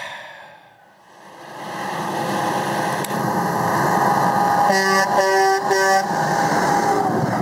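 An eighteen-wheeler truck's engine rumbles and builds steadily, then its air horn blasts in three loud bursts over the droning motor.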